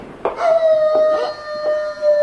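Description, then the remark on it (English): A single long wolf howl holds a steady, mournful pitch that sags slightly over about two seconds, loud, with a few soft rustling bursts behind it. “What's that? A wolf?”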